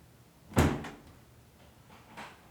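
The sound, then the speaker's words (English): A bedroom door creaks and swings shut with a sharp thud, followed a moment later by a softer second knock, over a low background hum; no one is heard entering the room. “You can clearly hear Emma's door creak closed, and then...”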